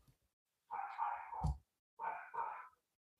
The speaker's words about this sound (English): Dogs are flipping out. I don't know what's going on downstairs.